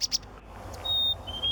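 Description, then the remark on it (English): Birdsong sound effect: two quick high chirps, then a pair of longer, thin, steady whistled notes, clear, with no talking. “A little sound effect for you this morning.”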